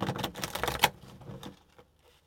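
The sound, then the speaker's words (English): A quick burst of shuffling a slippery tarot deck, a dense papery riffle and clatter with a sharper snap near the middle, fading out into quiet after about a second and a half. “I'm gonna give it another shuffle.”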